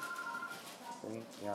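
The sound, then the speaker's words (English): A steady electronic ringing tone on a phone line after a cell phone number is dialed, thin and tinny as if heard through a handset, lasting a moment before a voice briefly breaks in. “Dialing now. Dying now. And it's ringing.”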